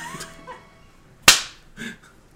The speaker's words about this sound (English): What haven't we tried yet? We're hugging, consoling. I, out of nothing else to do, I'm just gonna slap him.